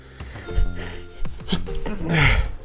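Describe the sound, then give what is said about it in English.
A single sneeze, preceded by a few short gasping inhales as it builds, then a loud breathy burst near the end. No one is talking. “Haven't sneezed in a while? Try Pollen.”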